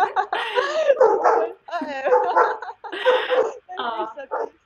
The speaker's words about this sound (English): Oh, the dogs! I just heard them. they want to go to the mountains.